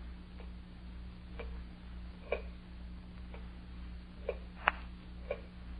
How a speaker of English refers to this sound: Terrible clock. Ticking. Yeah, I know. I've been sitting here listening to it. I can't stand it anymore. I'll stop it.